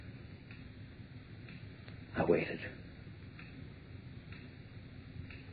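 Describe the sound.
Faint, steady clock ticks about once a second in a quiet room, with a low hum underneath and a brief spoken phrase partway through.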